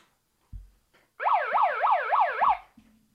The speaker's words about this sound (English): What's up with that siren in the background?